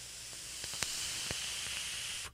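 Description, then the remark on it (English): A steady airy hiss of a Vandy Vape Widowmaker RTA coil firing during a draw, filled with Banana Beauty e-liquid from Baked, with a few faint, scattered light crackles and pops, fairly quiet, ending abruptly after about two seconds. “There's some light crackling happening. Not like a deep crackle like I like, but there's some nice, nice light crackling happening.”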